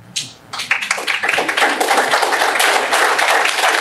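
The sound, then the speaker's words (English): At a Chicago Teachers Union leader's speech, an audience breaks into applause after a brief hesitant moment following a greeting to friends at the Charter School Network, quickly swelling into steady, dense clapping from many hands that stays loud through the end, with no voices over it. “Everyone was like, should we clap?”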